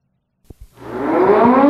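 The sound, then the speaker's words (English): Two soft low thumps, then a loud civil defense siren begins winding up, its wailing tone climbing steadily in pitch as it grows louder and fills the short clip. “Can we sound the siren again?”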